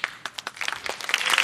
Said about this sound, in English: That's like less clapping.